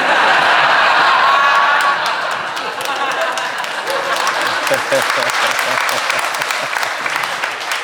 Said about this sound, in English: You applaud now.